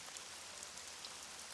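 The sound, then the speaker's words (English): Steady, heavy rainfall hisses continuously outside with no pauses, a broad wash of droplets pattering on surfaces, with no voices present. “Jenny kept hearing the sound of heavy rain on the outside.”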